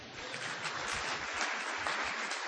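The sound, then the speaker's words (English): A crowd at a game-show-style event claps steadily, dense applause filling the whole moment at a moderate, even volume with no voices standing out. “A good-looking game show host, and a wonderful, affirming crowd. We've got all that. Some applause, yes.”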